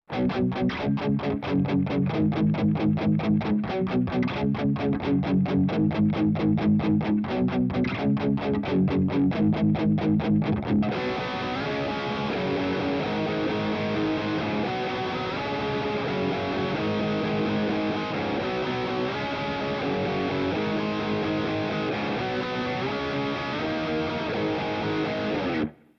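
Distorted electric guitar with a light reverb wash plays tight, rhythmic chugging strums, then shifts into sustained ringing chords, staying loud and steady throughout with no voices.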